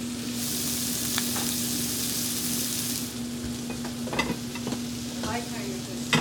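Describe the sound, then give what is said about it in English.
Shallots, thyme and marjoram frying in a pan, steaming on top of the food as its other side cooks; a steady bright sizzle with occasional scraping and stirring clicks; the hiss eases a little halfway through while the crackle carries on. “And we'll let that other side cook, kind of steaming all of the herbs and everything on top, and then we'll whip it around to roll it in.”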